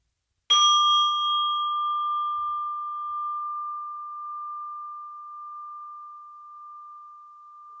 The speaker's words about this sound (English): And I will ring the bell to start our practice. The sound of the bell is inviting you to focus on yourself and on your experience of breathing.